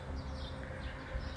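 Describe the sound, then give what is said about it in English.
Faint bird chirps from neighborhood birds on a Tuesday morning, heard from a front porch, over a low, steady outdoor rumble, with a brief sharper call near the end. No one speaks. “The sounds you hear are the birds in the neighborhood and also a man who's going through everyone's recycle bins.”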